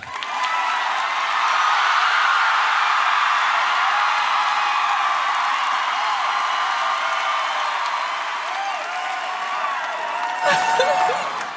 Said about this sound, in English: No, but really, let's have a round of applause for Allison Janney.